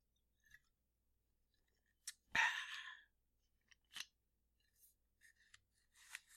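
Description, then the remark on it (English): Crinkling and rustling of paper being folded and wrapped around the cap of a rum bottle, with one louder crackling burst followed by scattered soft crinkles and taps. “Once you've wrapped the paper around it and covered the cap, you will have origamied a small cap about the size of a shotgun shell.”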